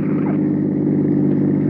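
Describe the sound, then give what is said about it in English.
A heavy car engine roars steadily at speed on a road, a loud, continuous low drone with a deep rumble, with no voices over it. “She's weaving. I'm up to 65.”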